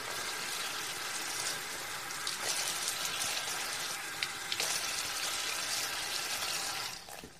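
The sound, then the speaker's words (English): Steady running water pours and splashes continuously, like a faucet rinsing suds away in a sink, with a few brief louder splashes; no voices. “Wash off some of the bubbles too.”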